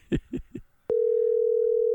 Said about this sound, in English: This has to be super entertaining for everyone just listening to the phone ring.